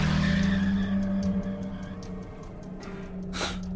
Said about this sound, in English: I jammed the keys into the ignition and took off like a gunshot, leaving the neighborhood at 3 times the legal speed limit.